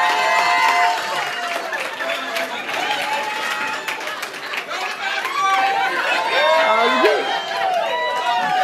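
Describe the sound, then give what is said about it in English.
An audience cheers and applauds for the worship team in a steady, loud wash of sound, with many overlapping voices whooping and shouting above scattered clapping for the full eight seconds. “So let me hear it for the worship team.”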